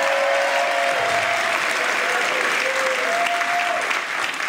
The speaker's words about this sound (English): Bought a new house recently. Y'all clap for that. Bought a new house.